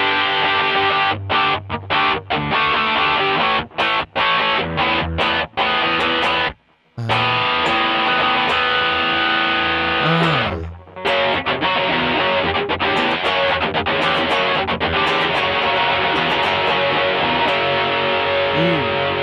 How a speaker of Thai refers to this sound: มันก็จะเป็นโอเวอร์ไดรฟ์ที่ค่อนข้างหนาและแรงหน่อยอะไรอย่าง นี้เพราะนั้นส่วนใหญ่ตู้จะมีเสียงประมาณนี้